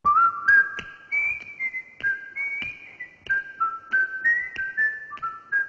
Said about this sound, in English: Is that not one of the whistling theme of Andy Griffith? We've all tried it. We've all failed. Iconic. Iconic opening.